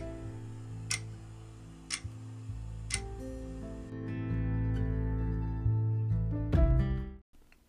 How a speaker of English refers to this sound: The clock is ticking. What time is it? It's later than you think.